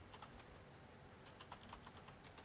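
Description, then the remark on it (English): Typing on a mechanical keyboard with Cherry Red switches, each key individually silenced: quick runs of sharp, clicky keystrokes in two bursts separated by a short pause, fairly quiet over a low background hum, with no one talking. “I can hear the keyboard. Is it a mechanical keyboard?”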